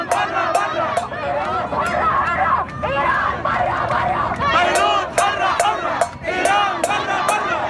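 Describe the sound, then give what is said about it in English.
A crowd of thousands of protesters at Martyrs Square in Beirut chants loudly and continuously in the evening against the government and Iran, many voices rising and falling in rhythmic, repeated bursts with sharp whistles cutting through. “Thousands of people have gathered here this evening, furious at what happened on Tuesday, chanting against the government, and also in that particular clip you just heard, against Iran.”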